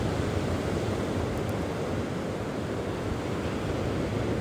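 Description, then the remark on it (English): A steady, full wash of ocean surf breaking on the shore rolls on without pause, a dense roar of breaking waves, moderately loud, with no voices present. “So as you sit and you lie and you listen to the waves”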